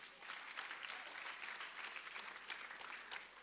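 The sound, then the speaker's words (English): A church crowd claps steadily for several seconds for students who answered questions about factors of production, a dense, even patter of many hands with no talking over it and no clear build or fade. “Can you clap for them?”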